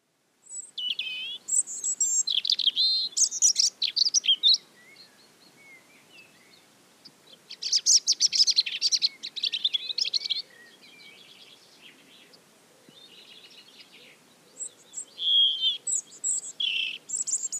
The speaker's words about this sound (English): That was the robin. So again, you know, this is a really common garden bird, but I think it is really good to start with the basics, and it's a beautiful song. The sort of structure to it is quite similar to the blackbird.